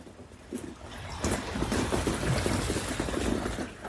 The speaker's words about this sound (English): And the drip, drip of the water running from the roof.